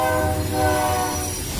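A loud, sustained train horn blares over the steady low rumble of a rolling train, with no voices, continuing steadily throughout the short moment.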